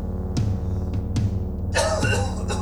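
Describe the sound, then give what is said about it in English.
A few rough coughs burst out after a deep breath of dusty air, the last one longer and harsher, over a steady low droning hum that fills the background. “I take a deep breath and immediately regret it after coughing up two giant dust flakes.”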